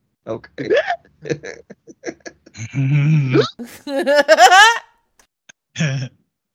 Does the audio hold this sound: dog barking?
no